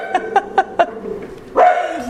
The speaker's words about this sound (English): I apologize, my doorbell just rang, which means my dog's going to go nuts now.